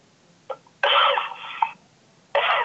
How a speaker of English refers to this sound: Sorry about that. I got a little cough.